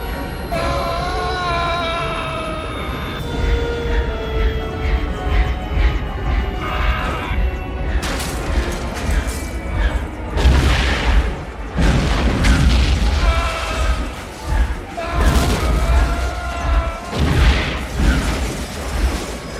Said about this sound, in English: Well, it's through that hole in the retractable stadium that Powers Booth's helicopter crashes in fantastic CGI fashion.